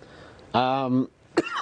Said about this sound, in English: Well, we can see you still have a cough.